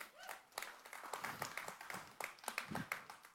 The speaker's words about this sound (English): That's only people in Geritol clapping. It works.